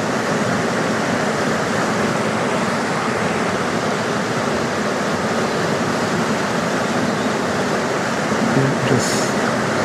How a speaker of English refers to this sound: Probably hear a weir behind me.